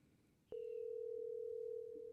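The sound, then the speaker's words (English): A steady electronic ringing tone of an outgoing phone call kicks in abruptly after a brief quiet moment and holds at an even pitch, loud, with no talking. “Now it is ringing on here.”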